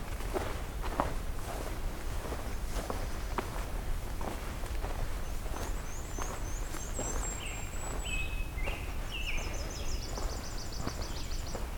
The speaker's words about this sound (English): I think that's ruby crowned kinglet. Oh no, I think that's golden crowned.